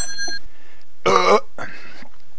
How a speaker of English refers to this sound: That burp was weak. Need a better one.